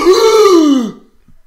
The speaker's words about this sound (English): What noise do you need me to make? How about just a shocked gasp reaction?